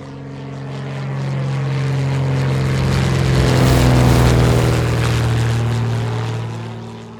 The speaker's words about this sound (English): Are you ready? Let's get on the plane. It's going to be a quick ride.